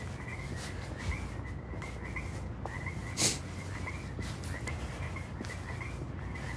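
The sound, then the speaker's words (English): A chorus of frogs croaks steadily in repeated pulsing calls over a constant outdoor hiss, with one brief louder burst partway through. No one speaks. “I'm just going to be quiet for a minute, because if I talk too much, these frogs will get spooked.”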